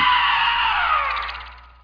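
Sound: scream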